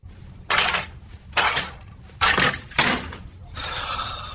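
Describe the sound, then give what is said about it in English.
Car keys jangle in four bright, shaky bursts with short gaps between them, followed by a softer, steadier rattle of metal as they are grabbed and handled by a guy in a mascot costume heading to the big game, in a commercial. “and for anybody wondering what that is, it's a guy in a mascot costume trying to grab his car keys to head to the big game”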